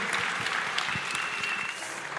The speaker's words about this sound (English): Let's have a big round of applause and a cheer for these guys.